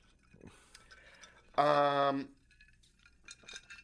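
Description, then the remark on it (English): A single bright clink of glasses of juice touching in a toast, ringing clearly for under a second before fading, with faint voices murmuring quietly around it. “Well, first off, cheers, bitch. The juice finally came.”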